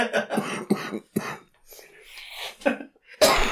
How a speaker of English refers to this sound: Whoa, that is a cough. Take a sip of your tea.